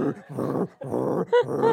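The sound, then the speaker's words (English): A person imitates a screamo-style growl with their voice: several raspy, guttural bursts in quick succession, loud and harsh, ending with a brief higher-pitched tonal cry. “Like I wonder how screamo I could go.”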